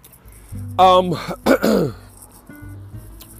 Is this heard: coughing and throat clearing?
yes